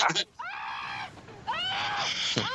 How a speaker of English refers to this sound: Just fast forward to all the screaming.